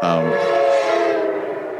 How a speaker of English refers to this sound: Love that train. Interrupts your train of thought, doesn't it?